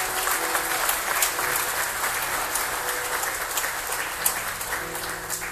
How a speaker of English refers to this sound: Come on, give the Lord a hand clap of praise.